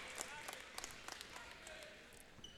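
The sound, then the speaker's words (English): A basketball crowd applauds steadily as all the starters check out of the game, with the score 64-51 in the fourth quarter: a dense wash of many hands clapping with sharper individual claps popping out now and then, holding at an even, moderate loudness throughout. “All the starters check out to a round of applause.”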